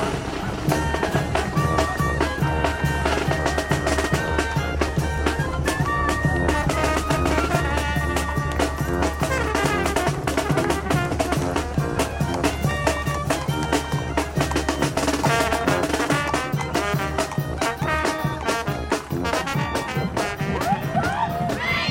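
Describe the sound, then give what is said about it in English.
An all-city marching band plays steadily and loudly in a street parade, brass melodies stacked over a constant low drum and bass pulse, filling the whole stretch without any talking. “The all-city marching band.”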